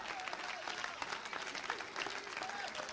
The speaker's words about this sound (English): Come on, people, clap to him for a moment. I wish you would raise the roof.